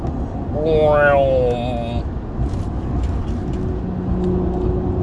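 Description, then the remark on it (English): A fast car roars past on Route 309 on a sunny 82-degree day, its engine pitch sweeping downward as it goes, then steady road rumble and traffic noise continue afterward. “And here comes that Tesla.”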